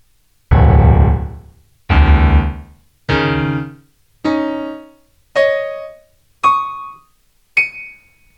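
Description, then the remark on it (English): Piano with seven evenly spaced two-note chords on the pairs of black keys, climbing steadily from the deep low register to bright high notes, each struck firmly and left to ring and fade. “These are the sets of two black keys, and I will be starting at the low end of the piano.”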